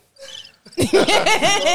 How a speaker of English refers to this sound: You supposed to hit the cricket button.